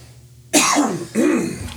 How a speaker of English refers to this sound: I got a cough again.